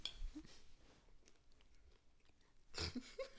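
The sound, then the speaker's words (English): Crunchy chewing of a brownie cookie, a brownie with a cookie on top, eaten during a mukbang: a burst of moist bites at the start, a quieter stretch of soft mouth sounds, then another loud crunchy chew near the end. No talking. “I'm not talking while chewing anymore.”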